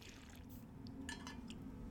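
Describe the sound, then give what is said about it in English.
Someone sips water, with a few soft, brief slurping and swallowing sounds over a low, steady background hum. No one speaks. “Drinking my water, y'all.”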